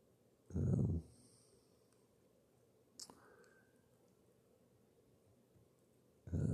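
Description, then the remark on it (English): An animal growls in two short, low rumbling bursts, one near the start and another at the end, with quiet breathy rustling and a brief click in between. “But it's growling and making itself known”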